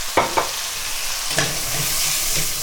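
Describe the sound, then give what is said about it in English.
A little glass of wine is poured into a hot risotto pan with pancetta fat, setting off a steady, bright sizzle, broken by a few soft scrapes and taps of a spoon stirring, with no one talking. “So add a little glass of wine to your risotto.”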